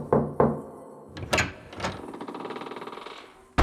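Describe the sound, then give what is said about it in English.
Three heavy knocks thud against a large wooden door in a temple, resonant, followed by a long rattling creak as the door seems to open. No voices. “You make your way to the large wooden door ahead. Once you are there, you knock three times.”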